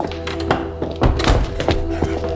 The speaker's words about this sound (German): Tim hatte die Tür geschlossen, um seine Freunde nicht zu stören.